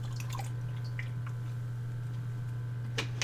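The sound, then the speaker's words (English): Quiet sips and wet swallowing clicks of someone drinking water, a few soft gulps over a steady low electrical hum, with no talking. “I'm going to take a drink of water real quick.”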